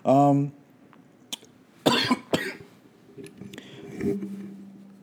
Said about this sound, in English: My bad. Just had a cough attack. Gosh, no COVID though.